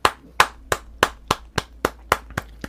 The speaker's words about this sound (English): applause as Nathan, Thelania, Johannes, Annabelle, Mirabelle all enter the room clapping.